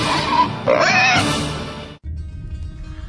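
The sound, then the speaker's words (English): Hogs oink and grunt loudly for a couple of seconds, with a few high squeals mixed in, opening the radio segment the Rev's 2012 Hog Watch. The sound then cuts off abruptly to a quieter, low background rumble. “It's the Rev's 2012 Hog Watch with Jim and Trav.”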